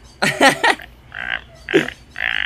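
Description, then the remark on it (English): A person imitates a toad's croak in a few throaty, gurgling bursts: a quick cluster of guttural croaks, then two shorter rasping ones with pauses between, fairly loud. “Yeah, that's a good toad voice.”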